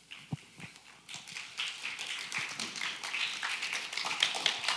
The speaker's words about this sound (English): I love it. Y'all clap for everything. It's amazing.